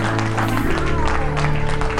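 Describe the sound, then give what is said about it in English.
A crowd applauds the announcement of Oracle Corporation's acquisition of NCT Software, many hands clapping in a dense, steady patter for the full two seconds, over a low droning hum. “It deserves a lot of clapping.”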